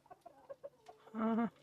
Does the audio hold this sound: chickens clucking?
yes